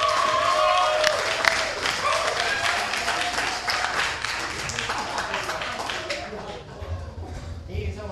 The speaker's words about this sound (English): Actually, I don't like coming up to applause anymore. I don't even understand why we have to clap and shit.